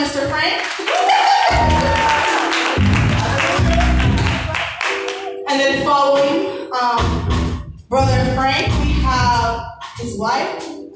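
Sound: round of applause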